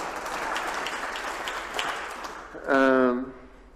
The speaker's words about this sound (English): You clapped. I can't believe you clapped. What does that mean? You have that low an opinion of me.